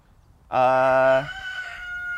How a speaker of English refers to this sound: What? Oh, shit! The rooster just answered it for me. I do speak rooster.